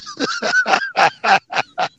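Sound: chickens squawking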